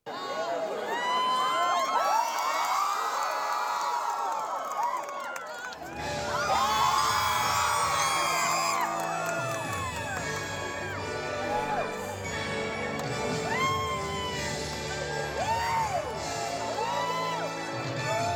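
A large crowd of cast members and their friends and family erupts in loud cheering, whoops and high-pitched screams as the Happily Ever After fireworks show starts, swelling again partway through and staying sustained and dense throughout, with many overlapping voices.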